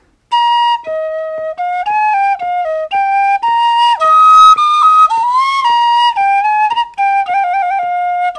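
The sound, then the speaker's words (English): A tin whistle, one carried into the Battle of the Somme in 1916, plays the military tune The Minstrel Boy alone, with clear bright notes, a few bent pitches and quick ornamental trills near the end. “I had the tin whistle in my hip pocket like I always have”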